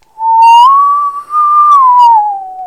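A person whistles a short, clear tune, close and fairly loud, with the pitch gliding up, briefly dipping, then sliding gently back down over a few seconds, no talking.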